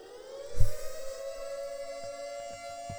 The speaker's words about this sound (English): The spoiler siren.